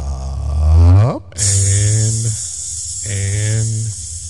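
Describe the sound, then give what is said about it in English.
A rising voiced tone sweeps up, then gives way to a loud, steady sizzling hiss that runs to the end, with a low buzzing hum pulsing beneath it twice. “And let it sizzle in your spirit.”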